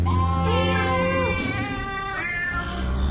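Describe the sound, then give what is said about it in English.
A chorus of animal voices, meowing cats, bleating goats and a lowing cow, sings a slow melody together, their sustained tonal calls layered over a deep steady drone, fairly loud. “That's some cats and a cow and some goats singing Angelo Badalamenti's Twin Peaks theme.”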